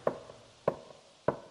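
Hammering from inside a dilapidated theater: three sharp, solid blows struck at a steady, unhurried pace, each with a woody mid-pitched thud and a brief ringing tail. No one speaks.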